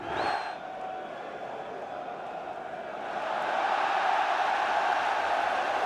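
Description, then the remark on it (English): A large crowd at a boxing ring roars and cheers in a dense, continuous wash of voices that swells louder about halfway through and stays loud to the end. “Listen to that crowd.”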